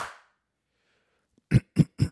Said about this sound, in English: And then we're going to clap so it syncs. One, no, on three. One, two, three.